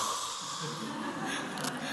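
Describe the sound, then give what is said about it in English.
A deep breath exhaled slowly and steadily, a continuous airy rush that holds at an even level for about two seconds with no talking. “You know, come back to earth and breathe all that excess air out until it just trickles back in and breathe it out, you know.”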